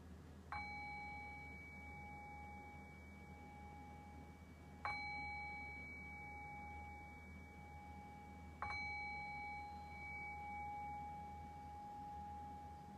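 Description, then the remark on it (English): A bell, rung as the cue to return from a guided meditation, is struck three times at steady intervals of about four seconds, each clear metallic tone ringing on and sustaining over a low background hum, with no talking. “And in a few moments, I'll ring the sound of the bell again, which will be the cue to return back into our conversational space.”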